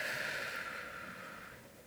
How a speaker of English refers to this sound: You take a deep breath in and a deep breath out.